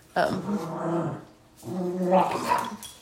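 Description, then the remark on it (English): A dog named Goobs lets out two drawn-out, grumbling vocalizations, each about a second long with a harmonic, moaning growl that rises and falls, separated by a short pause. “Yeah, see, Goobs, you're just proving our point that doggies are annoying.”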